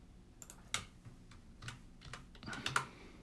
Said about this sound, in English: Excuse the typing there.